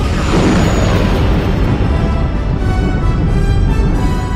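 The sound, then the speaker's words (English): A huge film explosion, with a cloud flying out as everything explodes behind it, rolls on as a loud, continuous roar, thick with deep rumble and hissing debris that stays steady for several seconds without any voices. “Love this shot now where the cloud is flying out and it just all explodes behind it.”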